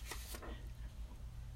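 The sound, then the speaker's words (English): A couple of quick, crisp rustles as a sheet of paper is picked up and shaken to be shown, then fading, over a steady low hum. “If I show you this paper, and I ask you, what did you see?”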